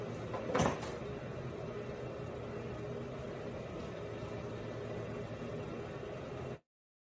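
One sharp knock in a TikTok video lands near the start against a steady, low background rumble, followed by several seconds of unchanging hum with no other distinct sounds.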